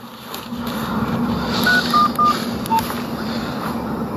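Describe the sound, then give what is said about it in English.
Four short touch-tone beeps of a phone being dialed, spaced unevenly across a couple of seconds, clear over a steady low hum of background noise. “It's ringing.”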